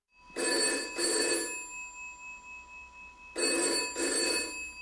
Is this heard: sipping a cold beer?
no